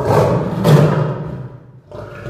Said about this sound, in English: It's like shooting out at the lion. And it hit the lion in the face, and it roared so loud.